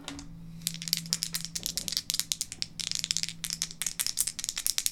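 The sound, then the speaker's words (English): Dice rattle and clatter in a rapid, continuous burst of sharp clicks for several seconds, shaken vigorously and rolled for a library use roll, with no one speaking. “Apparently, I need to warm these dice up.”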